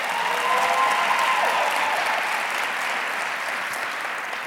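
A large crowd at a church conference applauds steadily as pastors and brothers from a church stand to be greeted, dense clapping at a constant loudness, with a few faint cheers or whistles rising over it early on.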